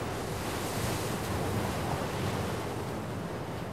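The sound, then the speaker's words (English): Ocean waves wash steadily onto the shore in a continuous roaring rush, loud, with a faint windy buffeting and no voices. “But converting the kinetic energy of waves into electrical power is a major engineering challenge.”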